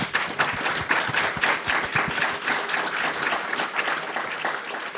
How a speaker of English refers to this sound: Thanks for the great advice, and thanks for the good talk today, guys. I really appreciate it. Let's give our panel a round of applause.